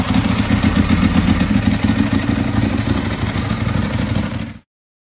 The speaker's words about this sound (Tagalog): Palyado yung Harley ah. Oo nga eh. Hindi naman, nag-a-idle kasi, single carb kasi, kaya ganun yung tunog.